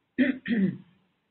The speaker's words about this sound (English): And I shall clear my throat. Please excuse me.